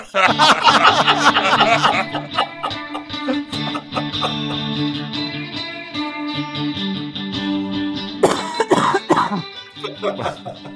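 A cluster of harsh coughs opens, then a steady droning tone carries on before another rough burst of coughing and throat clearing near the end.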